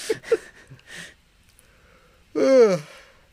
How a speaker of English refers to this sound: Yawning.